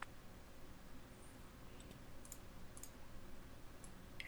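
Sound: dice being rolled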